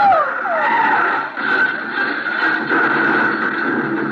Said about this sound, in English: what's the matter with him, the way he's driving? Well, he's going to crash.